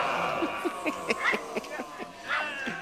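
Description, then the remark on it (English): A small dog yips and barks in a quick, fairly regular series of short, sharp bursts over steady, sustained organ-like chords, all moderately loud. The dog is on an organ during a Stupid Pet Tricks segment on a television show. “What is that dog doing on the organ?”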